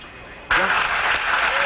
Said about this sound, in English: An extremely loud applause here in Mission Control. Control. Extremely loud applause as Apollo 13 on main chutes comes through loud and clear on the television